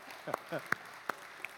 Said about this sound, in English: And so he deserves a round of applause for that right there.